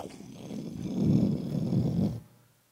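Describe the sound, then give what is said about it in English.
A deep rumble of rolling thunder swells over about two seconds, then fades quickly into silence. The low, growling roll is moderately loud and heard alone, with no voices. “But for some, it was thunder. That's all it was, thunder.”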